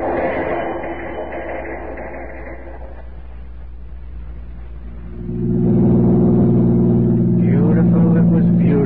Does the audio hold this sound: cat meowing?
no